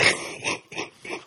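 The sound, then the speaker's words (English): A rough, hacking coughing fit: four harsh bursts in quick succession, each strong and raspy, with no talking over them. “That's a nasty cough you got there”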